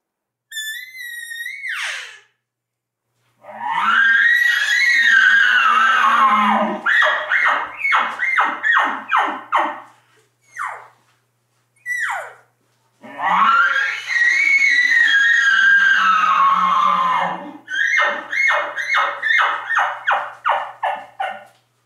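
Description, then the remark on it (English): Imitation bull elk bugles made by an elk caller to draw in other bulls: a high, squealing whistle followed by two long, raspy rising-and-falling bugles, each ending in a rapid series of loud grunting chuckles. “You want to try to keep it louder and more interesting than the real elk that are just nearby.”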